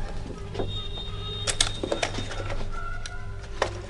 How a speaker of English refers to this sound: Then he pulled the camera out of his pocket and began taking pictures.